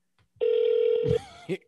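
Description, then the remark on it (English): A single steady ringback tone hums for under a second as an outgoing call rings through, then cuts off while a voice mutters briefly at the end. “I swear, if he answered the phone like that, I will fucking die.”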